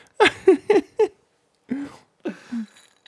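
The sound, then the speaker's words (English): A loud, wet slurping drink of beer: four quick gulping pulls, a pause, then a few more gurgly swallows, each one dropping in pitch. No one speaks. “That was a disgusting drinking sound I just made.”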